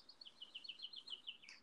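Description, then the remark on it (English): A rapid series of high, bright bird chirps repeats in a quick, even rhythm, fairly faint, with no voices over them. “Are those live birds?”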